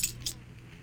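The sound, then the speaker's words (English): Keys on a ring jangle twice in quick, short bursts, a light metallic rattle over a quiet low background hum with no one talking. “But my other keys are all on the ring.”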